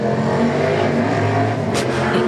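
A loud, big motorbike engine roars, its deep droning rev holding steady for a couple of seconds with a brief higher whine near the end, no voices present.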